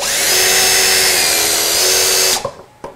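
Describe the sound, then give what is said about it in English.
An impact drill spinning a 3D-printed propeller through water runs at full speed with a loud, steady, high-pitched whine for over two seconds, then cuts off abruptly, followed by a few light clicks and knocks. “And then I'm just using a impact drill here to give it some spinning power, and it does a really good job of pushing it through the water.”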